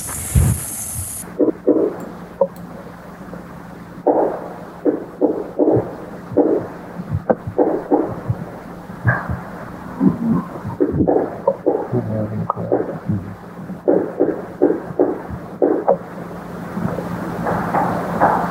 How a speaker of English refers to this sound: Okay, what you have there is a classic Sasquatch sound at this point, the knocking on trees. A lot of folks believe that that is a way that they communicate with each other.